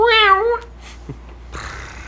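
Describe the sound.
A cat lets out one clear, drawn-out meow, its pitch rising then falling, followed by a quiet stretch with faint shuffling and a soft hiss of noise.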